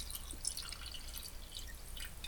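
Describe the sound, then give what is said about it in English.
Sound of a drink being poured into a glass, with a steady, bright trickle and fizzy crackle lasting a couple of seconds and no talking. “Yeah, that was her pouring a drink.”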